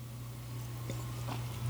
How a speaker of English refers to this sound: Wait, let me drink a little bit more. Hold on. Let's take a sip.